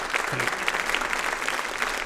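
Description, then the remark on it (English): Steady applause from an audience, a dense wash of many hands clapping at once, sustained and fairly loud throughout with no voices standing out. “Ladies and gentlemen, big round of applause”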